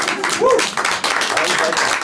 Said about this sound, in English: We should clap after poetry.